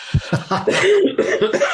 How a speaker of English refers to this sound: Excuse me for coughing. I'm allergic to my cat. Can you believe that? Oh, my goodness. My eyes are practically closed and I'm coughing.